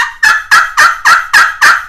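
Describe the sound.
A rapid, even run of about seven raspy turkey yelps made on a friction pot call with one of several strikers (solid plastic, carbon), loud, each note sharp and evenly spaced, with no talking.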